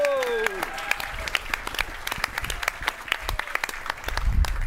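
An audience at an Entourage event breaks into applause for a guest being introduced, many hands clapping in a steady dense patter that holds throughout, with a brief tonal sweep at the start and a low rumble rising near the end.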